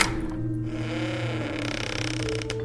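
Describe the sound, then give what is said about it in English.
A key turns with mechanical clicking, and a heavy door swings open on a long, loud, groaning creak whose pitch wavers and slides, with a few sharp clicks near the end. “I heard the turning of a key, followed by the slow, creaking swing of a heavy door.”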